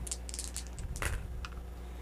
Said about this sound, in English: There you go. Those are the dice rolls I needed. That was 3 threes in a row. Uh-huh. That's not a good sign. My dice are rolling in triplets today.